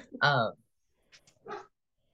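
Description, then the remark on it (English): A dog barks twice, a loud, sharp bark followed by a quieter, shorter one about a second later, with near silence between them. “That's my other dog.”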